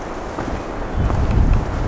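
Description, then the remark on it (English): Steady outdoor wind buffets the microphone, a low rumbling gust that swells louder about halfway through and keeps blowing to the end, with no voices. “It's getting a little windy here.”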